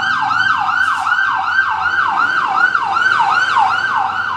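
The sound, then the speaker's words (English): A tow truck's siren yelps as it passes outside, in a fast, steady cycle of rising and falling sweeps, loud and continuous throughout, with faint road rumble underneath and no talking. “I don't know if I've ever seen a tow truck make that much noise.”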